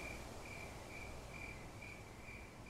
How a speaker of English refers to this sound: And you wrote about the anthropoid orchestra, as you called it, when you and your boyfriend were sitting on a park bench listening to crickets chirping at dusk.